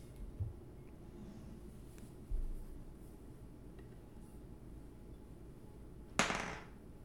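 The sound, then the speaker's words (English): Dice are rolled on a table, landing on a seven: a couple of soft, dull knocks early on, then one sharp, bright clatter near the end against a quiet, hushed background with no talking. “Go ahead and roll your dice again.”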